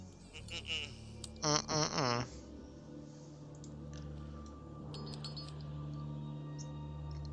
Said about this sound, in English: He farted them out.